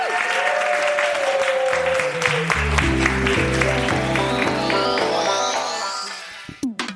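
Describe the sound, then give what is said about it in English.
An audience at the Machynlleth Comedy Festival claps loudly and steadily for several seconds for guest Ria Lina, a dense wash of applause with music playing over it, tapering off near the end. “Can we get a big round of applause for our guest, Ria Lina?”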